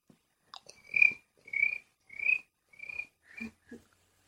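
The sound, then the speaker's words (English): A voice imitates a cricket with a run of short, high, buzzy chirps repeated at an even pace, five or six in all, the last ones softer and clipped. “You're like a cricket. Make the cricket noise.”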